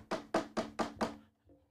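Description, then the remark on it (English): Five hard, rapid knocks pound on a door in an even, insistent rhythm, loud, each with a booming thud, followed by a brief faint sound and quiet. “They knock on your door like the police though.”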